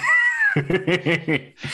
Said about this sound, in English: Do we need the cat to calm down? For the sake of my drywall, if nothing else, yes.